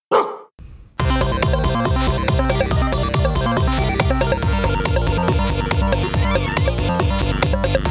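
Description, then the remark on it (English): A single loud dog bark sounds at the start, followed after a brief pause by steady, rhythmic music with a driving beat that continues to the end. “You just probably heard a dog now, if the microphone picked it up.”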